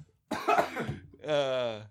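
A harsh cough bursts out, followed by a strained, drawn-out throaty vocal sound, loud.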